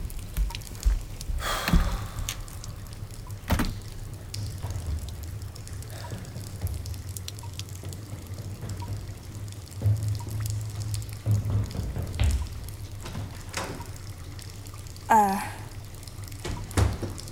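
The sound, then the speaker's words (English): Water runs and pours steadily in an apartment, a constant wash of splashing with a low hum beneath and a few brief knocks and clatters along the way. “Oh, I wouldn't touch that Wit, water.”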